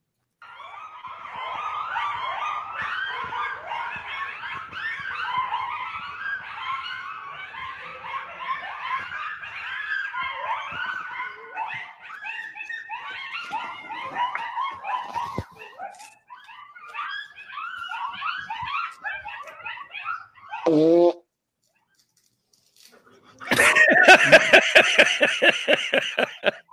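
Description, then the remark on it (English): A pack of coyotes yips and howls in a frantic, overlapping chorus, then one long wavering howl slides downward, a brief pause, and a final burst of loud yipping. “Now, I know it's bad quality, but are those the eyes of all the coyotes?”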